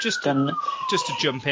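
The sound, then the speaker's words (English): An emergency vehicle siren wails steadily in the background, its single tone slowly falling in pitch, while a person talks over it in the foreground. “Honestly, that obviously you heard that emergency vehicle in the background.”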